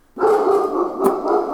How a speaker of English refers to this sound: The app has a dog barking behind it.